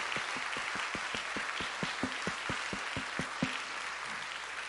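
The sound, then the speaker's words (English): A round of applause from a church audience welcoming new members into the church family. Many hands clap steadily, with a few sharper, louder claps standing out in an even rhythm, then the applause fades out near the end. No one speaks. “Now let us give them a round of applause and welcome them to our church family.”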